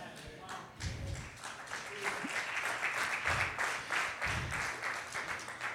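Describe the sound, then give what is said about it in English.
An audience claps in a dense, sustained wash of applause that stays steady and fairly loud throughout, with scattered shouts and voices mixed in beneath the clapping. “You clap, but I want you to understand, don't forget that.”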